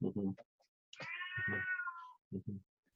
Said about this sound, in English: And you're hearing a 19-year-old cat that is very vocal right now.